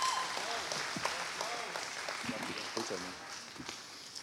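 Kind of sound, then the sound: crowd, audience applause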